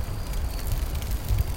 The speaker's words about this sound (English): The fire is crackling merrily. The low sound of voices talking around the fire makes you feel drowsy.